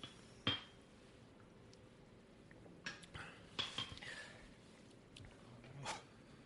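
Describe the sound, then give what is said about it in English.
Several sharp glass clinks ring out during a toast, scattered across a few seconds in quick bursts, with faint background noise in between and no talking over them. “So let's kick things off with a nice cheers to him,”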